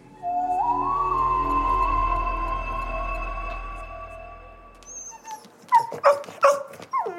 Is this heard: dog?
yes